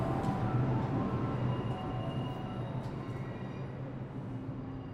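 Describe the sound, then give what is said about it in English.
A train rumbles loudly, a dense, steady roar of wheels and engine noise that eases off slightly toward the end, as if pulling into a station platform. “As we stood on the platform waiting for the train”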